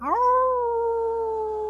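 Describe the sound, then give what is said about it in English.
A person imitates a wolf with a single long howl that swoops up quickly, then holds a steady, fairly loud tone with no talking around it. “You hear people howling like animals as you join in, and you see … howling like a wolf.”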